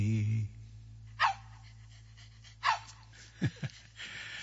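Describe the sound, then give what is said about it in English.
A dog named Jack gives several short, sharp barks and yelps spaced across a few seconds, with a whimpering quality, over a low background hum. “I love my dog here on WDEV. I like my dog.”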